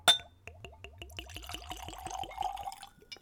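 A spirit is poured neat from a bottle into a clean Glencairn whiskey glass, glugging in a quick rhythmic series of clear gurgles, starting with a faint clink and tapering off after about three seconds.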